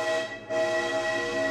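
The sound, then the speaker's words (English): A loud, sustained train whistle sounds as a rich chord of tones, dipping briefly before blaring again steadily until the end. No one speaks. “All aboard the train to Mount Shasta, California”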